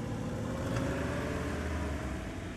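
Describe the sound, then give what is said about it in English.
A car engine rumbles steadily, a low continuous motor drone with no voices, as people get in the cars to start a journey. “Guys, yeah, you guys get in the cars and start your journey.”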